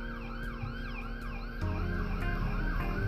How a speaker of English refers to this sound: As you hear the soundtrack of Sunny South Florida in the background of police sirens.